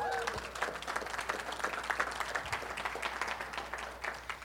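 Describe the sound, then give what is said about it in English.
An audience applauds steadily, a dense patter of many hands clapping at once, holding fairly even in loudness for several seconds before easing slightly at the end. “And I think we need a round of applause for that.”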